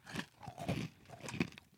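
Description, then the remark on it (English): Crunching of a crisp apple-flavored snack, made in York, Pennsylvania, being chewed, several bursts of crackly bites in an uneven rhythm, fairly quiet with no talking. “That crunch. I love it.”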